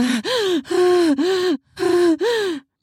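Heavy, voiced panting close to the mic: about five quick gasping breaths in a rapid rhythm, with a short pause partway through and no speech.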